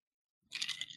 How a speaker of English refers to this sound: Yes, I have I do have some ice water here that I'm sipping, which is, I have to say, very good.